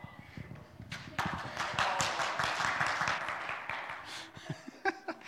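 A feeble round of applause: a few scattered hand claps that quickly thicken into a thin, modest patter, then trail off into isolated claps over about five seconds, with no voices.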